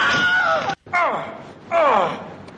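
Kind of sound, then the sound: sound effect, wilhelm scream sound effect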